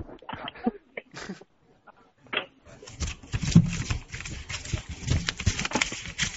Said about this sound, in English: Why does it sound like the phone is brushing up against hair?